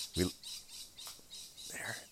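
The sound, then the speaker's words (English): Lorikeets squawk and screech in a rapid series of harsh, high-pitched calls, moderately loud, with one sharper squawk near the start, at Coolangatta on the Gold Coast, Queensland. “What bird's that real quick here? Larkeet.”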